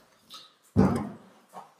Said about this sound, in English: Oh, wow. We're just being attacked here by this vicious pit bull right now.